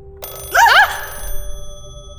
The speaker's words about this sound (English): How is that phone ringing? It's wired. Whoa, a landline. It really is the Dark Ages.